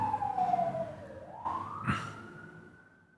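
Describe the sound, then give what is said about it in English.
A loud emergency vehicle siren wails, its tone sliding down and then climbing back up in a smooth sweep over a low rumble of traffic, fading slightly toward the end. “That's a loud siren.”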